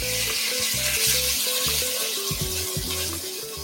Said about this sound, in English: So I've added my garlic, and you can hear that sizzling away. And I'm going to add in my kimchi, which I have chopped up into smaller pieces.